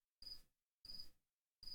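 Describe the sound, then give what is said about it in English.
A cricket chirps indoors in short, loud bursts, three trills spaced evenly about half a second apart, each a buzzy rasp with a shrill high tone, with silence between. “I don't want to hurt a cricket.”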